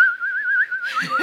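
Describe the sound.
A single person whistles a short wavering melody in a park, clear, the pitch gently rising and falling; a burst of breathy rustling noise joins near the end.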